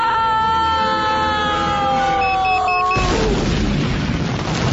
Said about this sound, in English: And the explosion at the end there is exactly what happened.